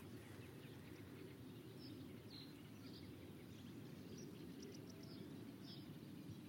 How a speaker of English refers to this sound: Faint songs of reed buntings. Reed buntings and reed warblers. Yeah, this is singing from the tops of little willow trees and in the reed beds.